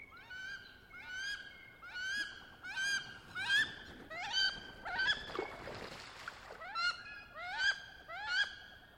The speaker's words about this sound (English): As I passed that way about a half hour afterward, the duck started up, uttering its wild alarm note.